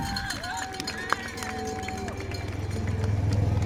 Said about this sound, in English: And we have a golf cart driving past us.